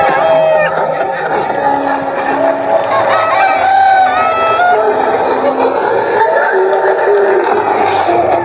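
A dense chorus of chickens clucking and squawking nonstop, with a rooster crowing through the noise, loud.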